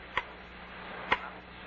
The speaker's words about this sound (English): It's going to drive me up the wall. Oh, come on now. It's only a clock. Grandfather clock. It never stops day and night.